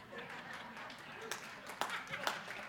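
A few hesitant, sharp handclaps from an audience member who starts to clap and then holds back, spaced irregularly, stopping almost as soon as they start, over a low murmur of background noise.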